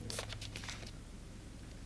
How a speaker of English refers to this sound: Hold on, I gotta take a sip of my drink here. I'm getting hoarse.